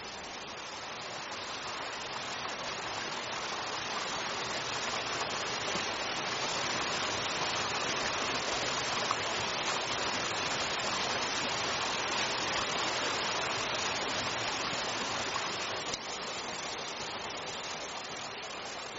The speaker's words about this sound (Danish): Sekkebekken er det på denne tida av året nok av vann.